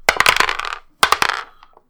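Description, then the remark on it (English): Three dice clatter and rattle inside a small box in two quick bursts of sharp, hard clicks, fairly loud, with a few last taps as they settle, rolled for initiative in a tabletop game. No one speaks. “Stop aiming for our dice. It's a small box, and there's 3 dice.”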